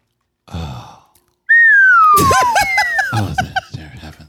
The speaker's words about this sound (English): That was actually a live slide whistle. Was it? Oh, he's playing instruments. Well done.